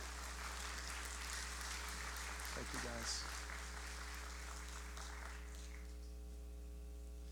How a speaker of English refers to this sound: Would you give them a warm round of applause?